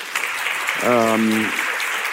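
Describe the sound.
Audience applause for a speaker, a steady wash of clapping throughout, with a brief held voiced tone rising over it midway before the clapping carries on alone.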